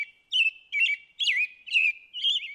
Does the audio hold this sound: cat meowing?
no